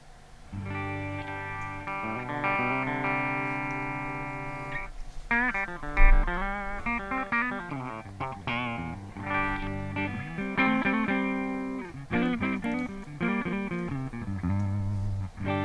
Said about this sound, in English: And for the guitar, we have a Music Man, an Ernie Ball Music Man, Steve Morse Y2D, which is a nice, sweet-sounding, like medium output guitar. It's very cool. And I'm miking it up with a, you know, straight-up 57.